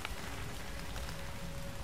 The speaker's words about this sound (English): I can't hear him anymore, but I can feel the rain and the ash coming down,